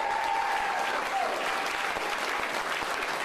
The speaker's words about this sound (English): Give a special round of applause to all the guardian angels, not just here, but all over the world.